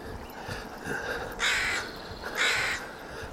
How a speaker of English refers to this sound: Crazy crow season is upon us. I haven't been dive bombed yet. I've been swooped a couple of times, but nobody's actually made contact with me yet, which has happened in the past.